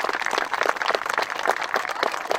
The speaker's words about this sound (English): Let's give these kids a huge round of applause.